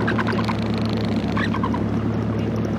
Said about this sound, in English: Now there's some amazing birds just passing overhead. They're Arctic terns. Do you know this bird travels farther than any other, right from the Arctic down to the Antarctic, where it spends the winter, and then back again.